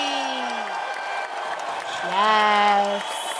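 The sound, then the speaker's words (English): Steady clapping for a guest runs for a few seconds, joined by sustained vocal tones, like a person whooping or cheering, that rise and swell in the middle before dropping away. “I'm clapping for my own guest.”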